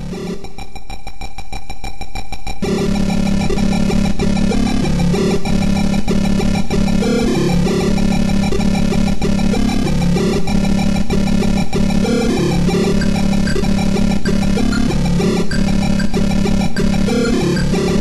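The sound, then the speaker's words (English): Harsh, buzzy early PC speaker music from the video game Lotus: The Ultimate Challenge, track "Metal Machine": loud square-wave tones shifting rapidly in a grinding, almost engine-like drone, thinner for the first couple of seconds before thickening. No voices. “But this particular version, I think, is early PC speaker.”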